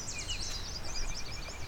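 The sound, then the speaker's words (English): Yellow warbler songs ring out in quick, bright, sweet whistled phrases, several birds overlapping over a low outdoor rumble, with no talking. “As you can hear, it's a lot of sweet, sweet, sweeter than sweet songs. All yellow warblers.”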